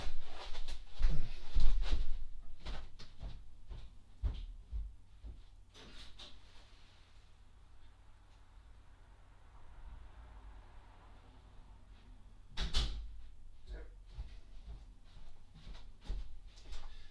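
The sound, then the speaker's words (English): A front door is opened with a cluster of clunks and rattles, then a quiet stretch of hush, followed by a sharper thud as it shuts, with a few softer knocks after. “Let me answer the door and I'll come back.”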